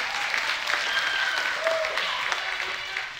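Steady applause from an audience, a dense wash of many hands clapping at even loudness throughout, with a couple of faint vocal calls rising briefly through it.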